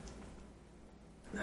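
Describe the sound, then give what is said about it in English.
After a second of near silence, a sudden sharp, breathy inhale rises quickly in loudness at the very end, like the catch of breath before a sneeze that never comes. “Sorry, I was about to sneeze.”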